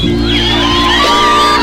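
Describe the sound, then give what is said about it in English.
A crowd screams and whoops loudly and continuously, many high voices overlapping into a dense, sustained roar of excitement that barely wavers over its short length. “I want to hear you scream.”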